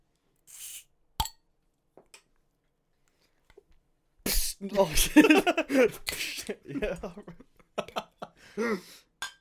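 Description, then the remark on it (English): A single bright, short clink of drinking glasses touching in a toast near the start, followed by a pause and then voices talking and laughing. “Just click yours and let's drink.”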